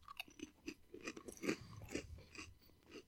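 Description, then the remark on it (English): Crunchy chewing on a seaweed-flavored Lay's potato chip with big chunks of real seaweed, with steady crackling bites repeating about every half second. No one talks over it. “That is an aggressively seaweed-flavored chip.”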